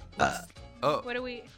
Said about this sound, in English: I want to keep a burp counter because I feel like you burp once a podcast.